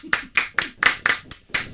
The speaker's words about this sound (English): Why are you clapping?